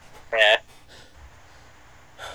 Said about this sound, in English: Sorry, I'm panting. I was dancing.